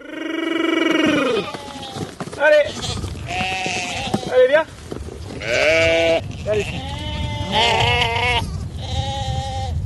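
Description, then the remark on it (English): A sheep farmer calls to a herd of his sheep at his family farm near the town of Dreux in France's Centre region, and many sheep answer with loud, overlapping bleats that come in waves for about ten seconds. “a sheep farmer, calls to a herd of his sheep at his family farm, Ferme du Puy, near the town of Dreux in France's Centre region.”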